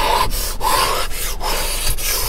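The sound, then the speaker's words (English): Heavy rain pours down outside, heard from inside a car, in a dense, loud, steady hiss that fills the whole clip, with a few brief dips every half second or so. No one speaks. “It's weird being in the car, but I needed to get away, and it's, as you can hear, it is pouring. It is pouring outside, so being on my front porch was not going to happen.”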